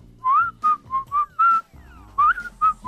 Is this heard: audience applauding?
no